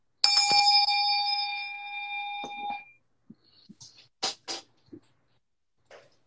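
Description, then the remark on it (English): A small hand bell rings once, clear, its bright tone lingering for a couple of seconds before fading, followed by a few soft handling sounds. “Okay, I just take this bell.”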